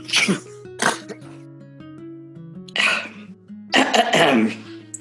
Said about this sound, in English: He sneezes into both hands, flattens his hair with them.